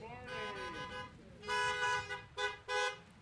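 Car horns honk outdoors: a wavering tone at first, then a loud sustained blast followed by two short, sharp toots in quick succession.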